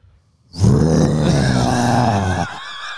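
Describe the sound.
A man lets out a loud, sustained guttural roar, imitating a silverback gorilla, with a rough, growling low pitch that holds for about two seconds before tapering into a quieter rasp.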